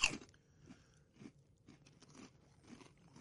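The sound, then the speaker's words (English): Crunching of a crispy vegan pork rind being chewed, a sharp initial bite followed by repeated brittle crunches in a steady chewing rhythm, fairly quiet with no talking. “I can totally get behind the crunch. It really kind of feels like one, honestly.”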